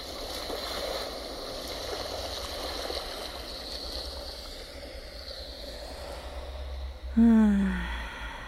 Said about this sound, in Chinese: 你有多久没有躺在沙滩上啦？你有多久没有听到海浪的声音呢？